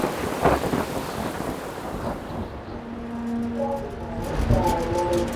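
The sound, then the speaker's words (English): A heavy thunderstorm: steady, dense rain hisses throughout while deep thunder rumbles roll in, swelling loudly near the start and again toward the end, with some wind buffeting the microphone. “It's the storm of the century.”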